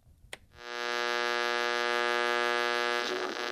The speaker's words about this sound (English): In the distance, they hear the radio in the living room click on.